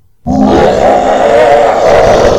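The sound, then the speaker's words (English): A loud, sustained monstrous roar from the beast Visser 3 had become bursts in after a brief silence and holds steady for about two seconds, deep and growling with a rough, rumbling texture. “The roar of the beast Visser 3 had become made the ground shake.”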